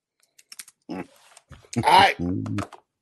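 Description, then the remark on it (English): A few quick, sharp computer keyboard taps clatter, scattered irregularly between and under a person's voice speaking loudly. “I've heard that story before, and I did start typing.”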